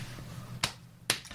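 A hand slaps a knee twice, about half a second apart: two sharp, crisp smacks standing out clearly against a quiet, low background hum, with no talking.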